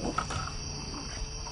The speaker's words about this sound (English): Oh, there's that fucking dog again.